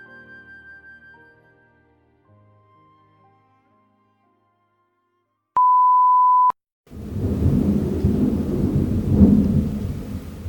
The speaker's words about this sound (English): Pick up some of the thunder. The thunder.